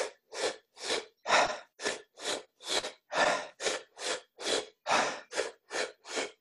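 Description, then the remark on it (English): Deep, forceful breathing demonstrating a three-part breathing technique (stomach, middle chest, upper chest, then release, repeated), a quick steady series of about fifteen loud, breathy inhales and releases in a driving rhythm, with no talking. “So the technique that I teach, it takes 30 seconds and it's stomach, middle chest, upper chest, release, and you repeat that.”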